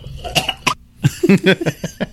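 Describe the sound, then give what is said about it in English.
A sputtering coughing fit from inhaling beer while tasting it: a couple of sharp coughs, a brief pause, then a quick run of rough, choked coughs and gasps. “Oh, is that where you inhaled as you tasted? Tried to sniff it. Doesn't work.”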